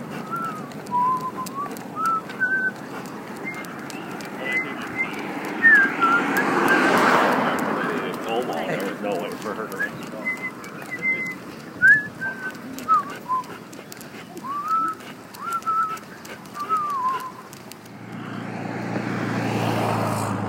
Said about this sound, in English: So it's kind of close to noon on Tuesday. A lot of cars driving out and about. It looks like the parking lot for Lower Harbor Park is pretty full of cars.